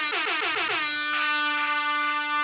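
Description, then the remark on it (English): A loud, sustained air horn blast played as a sound effect, with a bright, brassy tone, opening with a rapid warbling flutter before settling into a steady held blare for a couple of seconds. “Give me a fucking air horn.”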